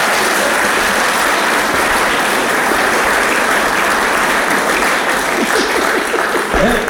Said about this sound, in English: Can we give her a round of applause for you?